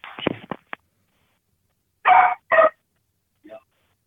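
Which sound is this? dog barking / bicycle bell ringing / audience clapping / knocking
dog barking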